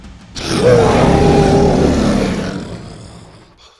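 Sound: dinosaur roar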